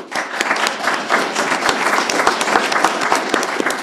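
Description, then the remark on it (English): A crowd applauds steadily, many hands clapping at once in a dense, continuous patter with sharper individual claps standing out. It is fairly loud, with no talking over it. “Clap to that, yeah.”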